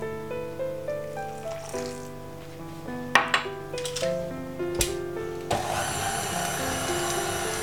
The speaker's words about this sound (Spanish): Ahora es cuando le añadiremos el agua para formar la bola de masa que necesitamos.